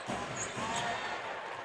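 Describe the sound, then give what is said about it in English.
A basketball being dribbled by Jazz player Jared Butler as he weaves in the lane before driving to the basket, its bounces thumping in a steady rhythm beneath a constant wash of arena crowd noise. “Butler weaving in the lane. Continues to maintain the dribble.”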